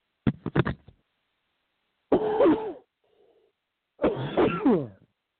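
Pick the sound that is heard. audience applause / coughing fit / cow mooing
coughing fit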